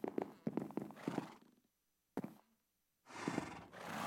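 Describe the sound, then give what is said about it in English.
A horse whinnies in a series of quick, rhythmic bursts, followed by a single sharp knock, a pause, then a loud breathy snort or whinny. Fairly loud, with no talking. “you have horses doing the commentary”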